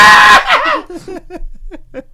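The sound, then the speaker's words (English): A voice imitates the hysterical female shrieking of a village at the end of a movie: a loud, harsh opening burst followed by a string of high, wavering shrieks that trail off and grow fainter. “The shrieking female hysteria that the village has at the end.”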